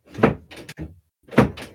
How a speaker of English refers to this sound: Door will close.